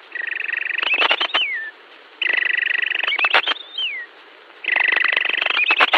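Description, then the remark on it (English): A man whistles an imitation of a North American robin's evening song: three phrases, each a steady high whistle breaking into a quick warbling trill and ending in a downward slur. Clear, no talking. “In the evening, he whistles like this.”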